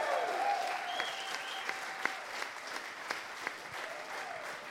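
A crowd applauds steadily for several seconds, a dense, even wash of clapping with a few sharper claps and faint whoops rising above it.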